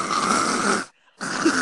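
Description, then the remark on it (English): Someone mimics the loud snoring of a female roommate, likened to Snorlax: two harsh, rasping snorts separated by a brief silent pause, with no other talking. “And then one of the girls that was rooming with us, she comes back and she's fucking snoring like fucking Snorlax, bro.”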